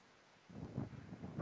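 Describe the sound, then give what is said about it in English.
Gusting wind at a baseball game buffets the microphone in rough, uneven surges, a low rumbling roar that swells suddenly after a quiet start and keeps pulsing in gusts. “The wind just continues to gust.”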